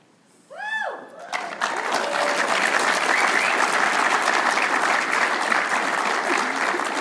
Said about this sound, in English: so we have 23 people who are being credentialed and commissioned as Stephen Ministry caregivers so that we can be a church that cares. Yes, it is fantastic. With hoots and hollers and applause, yeah.